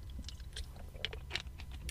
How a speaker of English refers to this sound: Let me take a sip of my smart water.